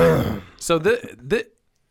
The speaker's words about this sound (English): I'm just going to keep clearing my throat and my microphone. Yeah. Right in it.